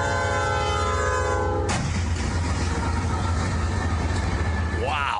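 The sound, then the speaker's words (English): A train horn blares loudly and steadily, then a sudden violent crash cuts it off, followed by a heavy, continuous grinding roar as the train collides with a truck, with a brief squeal near the end. “after I said that a couple of times that the train had actually made contact.”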